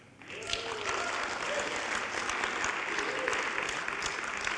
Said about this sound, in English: did we just clap a terrible rendition of Dr. Seuss?